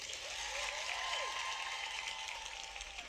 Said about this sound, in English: I think we should have a little applause.